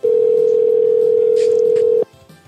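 A single steady electronic ringback tone from a phone line sounds for about two seconds, loud, then cuts off into faint background noise as a call to a Benihana's Steakhouse restaurant goes unanswered.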